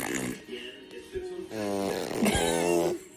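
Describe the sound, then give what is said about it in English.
A voice makes buzzy, drawn-out fart noises with the lips, several sputtering bursts in a row, fairly loud, with no clear words. “Yeah, that's what you do. Big farts.”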